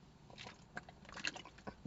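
Someone takes a quiet sip of water: soft wet mouth noises and a few small clicky gulps spread unevenly over two seconds, with no talking.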